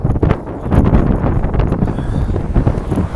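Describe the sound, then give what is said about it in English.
Loud, continuous wind buffeting a microphone with no windscreen while walking a dog over a bridge into Elysian Park, producing heavy low rumbling gusts and thumps that fill the whole recording with no pauses. “even though it probably sounds terribly loud since I have no windscreen.”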